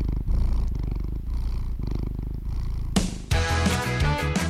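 A guinea pig purrs with a low, steady vibrating rumble for about three seconds, pulsing gently, before a burst of bright music abruptly takes over.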